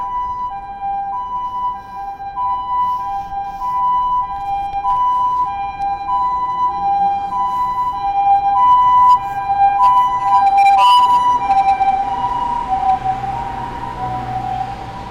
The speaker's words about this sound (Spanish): Ambulancia con algún viejito que se rompió, se cayó o algo.